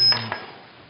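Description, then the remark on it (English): A bell is rung once, giving a bright, high-pitched ding that quickly fades, with a softer second tap right after. No one speaks. “Suppose I ring the bell.”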